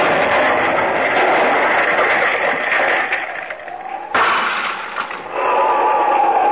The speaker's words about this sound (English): There. That is the explosion that broke the window of the cottage.